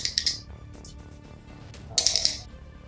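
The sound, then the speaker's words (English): Dice rattle and clatter across a hard surface in two quick bursts of bright clicking, a short pause between them, with a low background hum underneath. “I don't want to pick up my dice. They're just like standing there. Okay, let's do it.”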